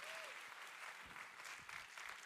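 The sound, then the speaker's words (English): Steady applause from an audience clapping in praise of Jesus, many hands clapping at once in a dense, continuous wash of sound that holds for a couple of seconds with faint murmurs underneath. “All right, if we're gonna clap, help me out.”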